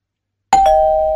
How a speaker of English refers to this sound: This is how different generations react to the doorbell.